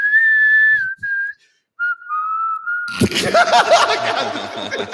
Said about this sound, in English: can you whistle the Kistler Whistler from Ford?